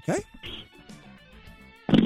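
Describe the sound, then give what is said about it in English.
An ass fart made by a caller over a phone line, with a short sputtering burst at the start and another at the end. Low, muffled vocal noises fill the gap between them. “That's an ass fart.”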